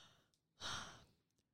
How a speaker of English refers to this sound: Stop yawning. You're making me yawn.